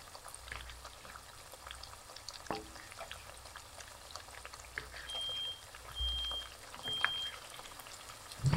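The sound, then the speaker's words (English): Pancakes fry in oil in a pan with a steady crackling sizzle, while a smoke detector sounds three short high-pitched electronic beeps partway through. No one speaks. “All right, I'm gonna call the frying of these pancakes done.”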